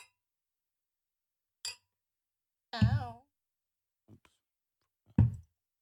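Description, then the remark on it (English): Glasses clink in a toast: a bright glassy clink rings out once, followed by a brief voiced exclamation, a couple of faint taps, and another short thud-like burst, otherwise quiet. “Cheers to another messy ass episode.”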